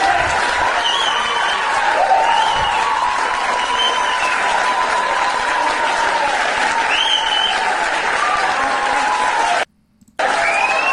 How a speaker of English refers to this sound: And there's a standing ovation. The camera pans out. It's a standing ovation. You got to love that.